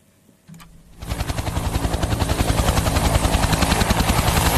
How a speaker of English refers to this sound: Military helicopters have been scouring the flooded streets and airlifting residents to a sports centre being used as a temporary shelter.